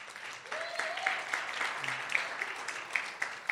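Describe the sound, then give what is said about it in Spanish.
An audience applauding steadily to welcome a woman coming up to speak about their work with young couples, a dense wash of many hands clapping at once with sharper individual claps popping out, holding at an even moderate level throughout. “Un aplauso para Brenda.”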